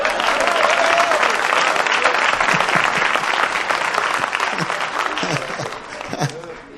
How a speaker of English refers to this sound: Ooh, the hand claps. I'm going to say it again. Maybe we get a better response.